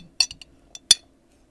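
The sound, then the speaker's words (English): A glass of lemon water clinks several times as someone takes a sip: bright, high-pitched taps in a quick uneven cluster, then one louder clink after a short pause, with quiet in between and no talking. “Let me get a sip of my lemon water before I get into this, because literally my anxiety.”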